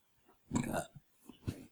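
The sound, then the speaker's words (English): A baby lets out a short, throaty burp, followed by a couple of fainter little grunting sounds, all quiet with no talking. “Hold on, I hear you burp.”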